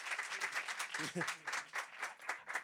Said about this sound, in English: Usually the audience applauds at that point. Applaud!